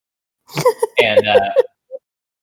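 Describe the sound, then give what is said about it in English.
A voice imitates a gnome's small, throaty cough: a few short, voiced hacking bursts at moderate loudness, ending with one faint little sound after a brief pause. “and the gnome just kind of coughs a little bit”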